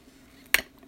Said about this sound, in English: Sorry, that's my water bottle. I got a new water bottle.